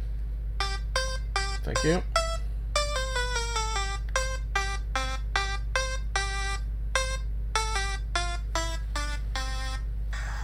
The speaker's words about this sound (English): What happened to my timer? Oh. Hello, timer?